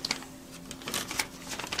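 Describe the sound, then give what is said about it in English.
Soft rustling of fabric as a jacket is pulled back on, a string of brief brushing swishes and crinkles with no talking. “And whilst I put my jacket back on, would you like to take out what's inside?”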